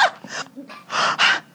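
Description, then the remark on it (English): Heavy, rapid breathing: a quick series of about five loud, airy in-and-out breaths, the last two longest and strongest, with no talking. “Breathing heavy.”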